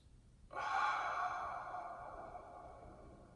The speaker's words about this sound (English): And take a big, nice inhale through your nose. And exhale with an ah through your mouth. Do that 2 more times.